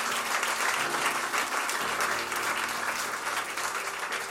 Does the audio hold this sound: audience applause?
yes